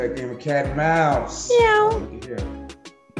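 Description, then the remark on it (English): A person's voice imitates a cat, giving a couple of drawn-out, rising and falling meows, with short vocal bits around them. “Cat and dog going back and forth.”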